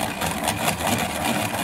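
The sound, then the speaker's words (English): A gray wall-mounted classroom pencil sharpener grinds away steadily as a pencil is sharpened, a rough, dense mechanical whir with faint rhythmic pulsing from the cranking. It runs continuously at an even, fairly loud level with no voices. “Somebody constantly got to sharpen their damn pencil?”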